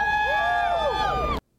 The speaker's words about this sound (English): Is that you in the crowd cheering?